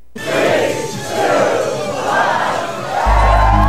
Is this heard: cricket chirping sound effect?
no